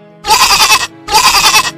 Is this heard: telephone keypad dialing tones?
no